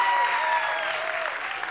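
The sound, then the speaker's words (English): An audience claps their hands in a steady, dense burst of applause that holds at an even, fairly loud level throughout, with no voices standing out above it. “Give her a hand clap.”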